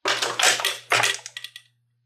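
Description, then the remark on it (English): An office door is flung open with a loud, rattling crash, then a second bang and a few quick clatters that fade out, over a low steady hum. “the door to Sammy's office was flung open.”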